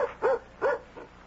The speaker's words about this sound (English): It's just the dog.